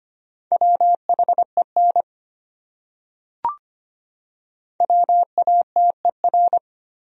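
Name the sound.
morse code tones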